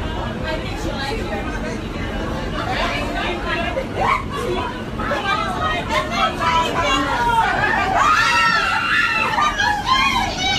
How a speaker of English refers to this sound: two women who are actually standing on the seats on the subway screaming because there's a mouse. The mouse is not attacking them. The mouse is not even running near them. The mouse is just in the car as it's going from station to station.